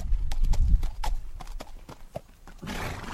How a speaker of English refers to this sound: riding school and stables outside Barcelona, young students lead their horses back to their stalls after class.